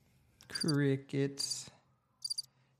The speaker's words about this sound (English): Crickets.